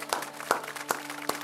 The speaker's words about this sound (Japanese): イエスに今大きな拍手していきましょう。